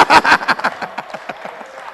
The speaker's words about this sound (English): The husbands are quiet. They can't clap. You see, even the fact that you can't clap means that you are afraid of her. Clap your hands.